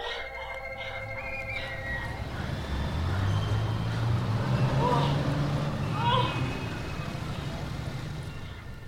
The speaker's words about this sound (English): Situations where even a person with normal hearing has difficulty in understanding speech. Restaurant noises, for example. Or heavy traffic noise.